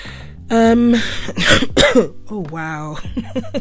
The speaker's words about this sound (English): Am I really coughing on this thing? Yes, I am, but I will still continue.